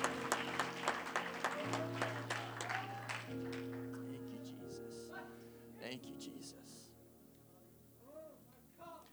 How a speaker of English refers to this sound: Clap your hands one more time to the Lord as you're seated.